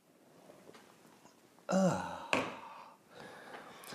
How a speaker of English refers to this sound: Join me now for the bonus simultaneous sip. It's happening now.